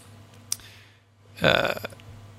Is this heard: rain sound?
no